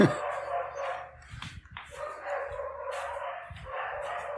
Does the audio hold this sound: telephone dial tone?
no